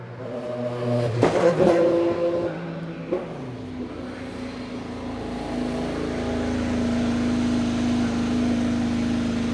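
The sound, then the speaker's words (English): An Indy car engine roars up close and loud at the track on a practice day, with sharp high-pitched revving bursts early on as it comes screaming into a pit stop and screeches to a halt, then settles into a steady, droning hum. No voices or crowd noise. “And I thought that was just so neat to be that close to an Indy car come screaming right up to you.”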